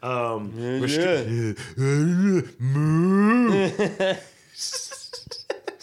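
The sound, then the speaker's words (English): A man's voice imitates a dying cow with long, loud, wavering groans that rise and sag in pitch, three or four drawn-out moans ending in breathy, sputtering gasps. “I like to think that's how cows sound as they die.”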